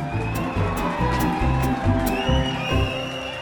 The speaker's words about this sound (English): And the sound of our cheering fans means it's time for listener comments.